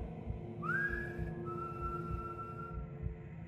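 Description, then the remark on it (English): At 4 a.m., outside a locked street door, a person whistles up toward a window with a two-part call: a quick upward slide into a held high note, then a slightly lower note drawn out for over a second, against a steady low rumble. “At 4 a.m, with the street door locked, I whistled up but got no reply.”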